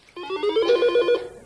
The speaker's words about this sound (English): So are you ready? Let's test your buzzer. All right. Test your buzzer.